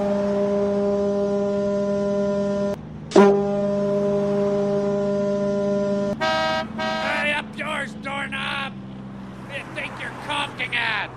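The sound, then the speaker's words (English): A long, steady horn-like blast from a conch shell, low and droning with a brief break partway through, followed by people talking once the tone stops. “No, I was just on my conk, iConk.”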